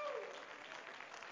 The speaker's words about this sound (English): And could the church say amen? Let's give him a hand clap of praise again. Thank you, Jesus.